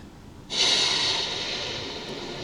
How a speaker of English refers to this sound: That's thunder.